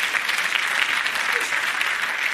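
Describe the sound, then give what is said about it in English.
An audience claps steadily, a dense wash of many hands applauding at an even, fairly loud level with no pauses or voices standing out. “Come on, if you get a clap, I'll give you a clap.”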